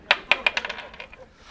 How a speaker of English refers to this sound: But I'm hotter, so I feel like I should get a dice roll multiplier. Oh, yeah, that's true. Roll the 20-sided die.